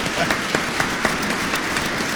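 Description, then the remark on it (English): A crowd applauds steadily, many hands clapping at once in a dense, crackling wash with brief sharper claps standing out, sustained at a fairly loud level throughout. “Stop clapping. Do not stop clapping.”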